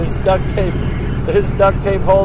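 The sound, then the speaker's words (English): A rough, rumbling engine of an old, duct-taped car with a worn muffler drones steadily, its loud low growl continuous while voices talk over it. “Our muffler is even worse off than last year's.”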